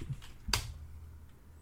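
A single crisp keyboard click rings out, one sharp key press standing alone over a faint low background hum.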